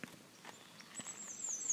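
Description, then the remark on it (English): Soft, steady footsteps walk outdoors at an even pace across a big field skirted by trees at 6 in the morning in chilly air, about six quiet crunching steps, while a thin, high bird-like whistle glides through the second half. “I'm out here taking a little walk.”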